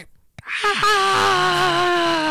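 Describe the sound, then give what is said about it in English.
A person imitates a goat with a loud, drawn-out yelling bleat, a strained, wavering vocal cry lasting about two seconds after a brief breath at the start. “I think goats yell. Like that.”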